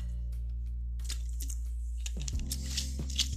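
sipping sparkling water

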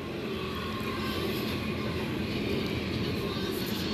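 train passing

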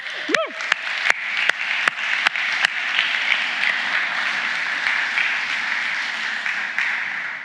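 audience round of applause

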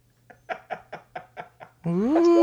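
dog barking

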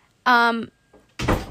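door slamming shut

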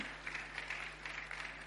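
audience clapping and cheering

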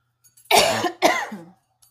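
coughing and throat clearing

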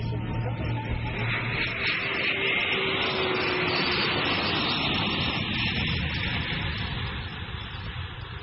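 jet airliner engines

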